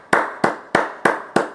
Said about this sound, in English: Now, a round of applause.